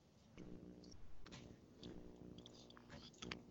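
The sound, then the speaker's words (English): Cats make low, rumbling, purr-like noises with a few sharper hissy bursts, going on steadily for several seconds at a fairly quiet level, with no one talking. “Sorry, the cats are making noise, so yeah, they're doing that right now.”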